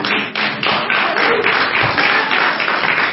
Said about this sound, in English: My daughter is leading the applause.